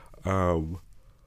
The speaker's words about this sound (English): Sorry y'all, I keep yawning.